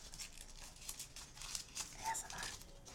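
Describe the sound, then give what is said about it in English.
Packaging being unwrapped and torn, a steady run of crinkly rustles and sharp ripping bursts over about three seconds, fairly quiet, with faint murmuring voices in the background. “All right, while they are writing, we're going to unwrap this guy.”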